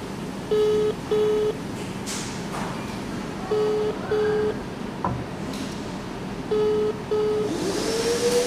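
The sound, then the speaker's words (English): A phone call's ringing tone repeats three times, each a quick double burst with pauses between, as the call goes unanswered, heard clearly over a steady background hum with faint scattered noises. “Okay, it's ringing.”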